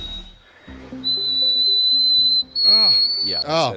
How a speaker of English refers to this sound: This guy actually sings. An E in the eighth octave, audio frequency 5,243 hertz. This isn't singing because it just does not. This is it. This is the real audio. Here it comes.